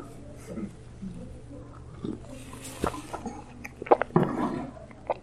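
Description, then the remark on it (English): Someone quietly sips coffee from a cup, with a few soft slurping and mouth sounds and small clinks over a low steady hum, no talking. “And I want a sip of coffee.”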